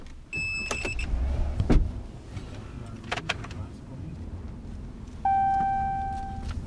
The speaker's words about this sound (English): guides his white U.S. Forest Service pickup truck over bumpy dirt roads in northern Oconto County near Lakewood.